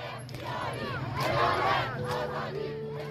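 protest crowd chanting

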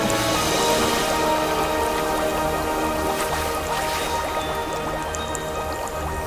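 bubbling water sound effect

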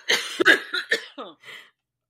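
coughing

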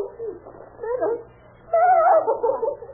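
dog whimpering

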